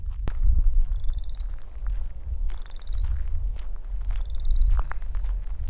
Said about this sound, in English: There's that frog again. Sounds like running your fingers on a fine-tooth comb.